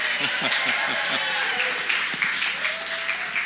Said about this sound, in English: Come on, if we applaud properly, you know what I'm saying?